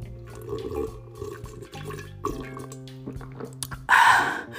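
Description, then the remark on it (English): Wet sipping and slurping of hot tea from a cup, ending in one louder, airy slurp, with a steady humming tone underneath throughout. “Let me sip on some more of this tea.”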